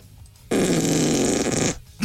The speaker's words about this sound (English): It took a while to get used to it, didn't it, when we all first started, just how much we played farts.